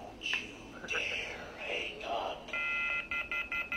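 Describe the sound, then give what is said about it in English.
A phone rings with an incoming call, its ringtone beeping in short, high electronic tones, a few scattered chirps at first, then a rapid, steady run of pulsed beeps near the end, with faint murmuring underneath. “Oh boy, I'm getting a phone call!”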